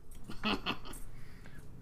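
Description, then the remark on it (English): A dog shakes itself off, its collar tags jingling in a couple of quick metallic bursts before fading to a soft rustle. “Hold on, a dog is shaking.”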